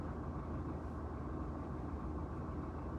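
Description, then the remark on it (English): A car engine idles steadily, a low, even rumble that holds constant without revving or pausing, fairly quiet, with no voices. “My car is on.”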